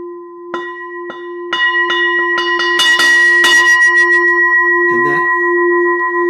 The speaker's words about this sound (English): and then ding, there's a pause, ding. And it gets a little quicker as you get closer to midnight, until right at midnight it gets really, really quick. So it's like here, and I'm going to try to do it on my bell, but not too loud. It goes.